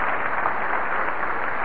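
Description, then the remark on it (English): A crowd cheering sound effect: a dense, steady wash of crowd noise, like a large audience cheering and clapping together, holding at an even, fairly loud level throughout with no individual voices standing out. “We've got to have a little more cheering there, please.”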